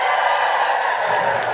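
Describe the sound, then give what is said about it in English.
An audience cheers loudly and steadily when asked to cheer if the speaker seems more of the wizard variety, a dense wash of many voices shouting together that holds for the whole moment without a break, with no single speaker standing out. “If you think I'm more of the wizard variety, cheer now.”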